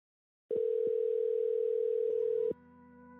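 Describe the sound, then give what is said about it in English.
A phone line ringing tone sounds steadily for about two seconds, loud and electronic, with a couple of faint clicks, then drops to a quieter, different hum as a phone call to a guest connects. “I don't know him super well, so let me get him on the phone.”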